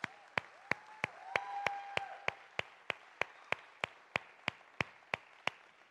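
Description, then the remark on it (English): An audience gives a round of applause: steady, rhythmic clapping, sharp, evenly spaced claps at roughly three per second that continue throughout, with a faint wavering tone, like a voice or whistle, in the first couple of seconds. “And I want you to give these guys a round of applause right here.”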